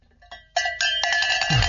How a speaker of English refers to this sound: we got to ring the bell again for Mississippi State.